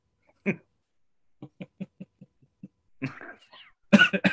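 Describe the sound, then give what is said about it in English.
A single sharp cough in Kilmainham Jail, then a quick run of short, evenly spaced hacking coughs, followed by a raspy throat-clearing and two harsher coughs at the end, with no talking. “Excuse me, I have a cough.”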